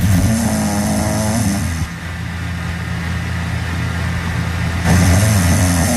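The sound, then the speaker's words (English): A woman snoring, from a video Chris Lane posted to Instagram of his wife snoring: a loud, rough, rattling snore, a few seconds of quieter breathing, then the next snore rumbling in again. No one speaks. “Chris Lane posted to Instagram and it was his wife snoring the other night.”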